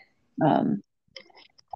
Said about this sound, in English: Sorry, I have to sip water. I talked for so long, I forget that I need to like breathe and drink water.